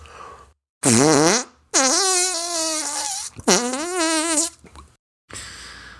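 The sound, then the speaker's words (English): A voice imitates the huge, earth-shattering crack heard outside in a film's closing scene, from a house next door being demolished: three loud, buzzing, raspy bursts whose pitch wobbles and bends, followed by a short hiss of noise at the end. “sound effect, they hear an earth shattering crack outside.”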